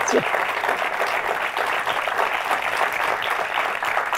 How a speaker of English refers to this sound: I was looking down at my notes and I was thinking, that's an unusually long applause for me. I didn't really get that anyway.